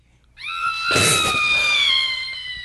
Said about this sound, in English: Can you go ahead and hit the, one of those sound effects there? Yeah. Do we have an air horn?